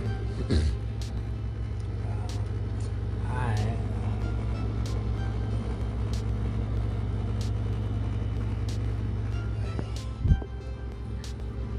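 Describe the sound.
A car rumbles past, its low engine drone holding steady for several seconds, with faint, indistinct voices in the background and a brief knock near the end.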